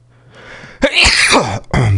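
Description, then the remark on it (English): A single loud sneeze follows a soft breathy inhale, with a brief gasp or sniff right after as the sneeze fades; no talking. “Bless you.”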